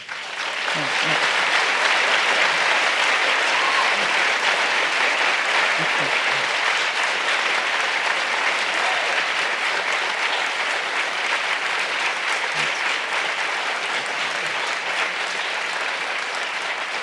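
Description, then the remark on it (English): Loud, sustained applause from a large hometown audience for the whole stretch, a dense steady wash of clapping with scattered cheers and murmurs, like a standing ovation. “They're liable to stand up again. It's a sappy bunch, these guys. It's a hometown crowd.”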